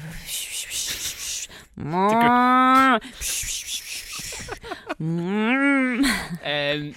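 A cow moos twice in long, drawn-out calls, then gives a short final low, loud, with breathy rustling noises between the calls.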